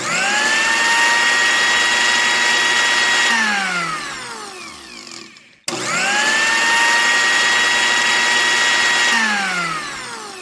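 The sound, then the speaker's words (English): A kitchen blender whirs loudly, blending carrot juice, pineapple, two bananas, peeled ginger, cashew nuts and lime juice; its motor winds down to a stop, then roars straight back up for a second burst of blending. No voices. “Let's put it in the blender.”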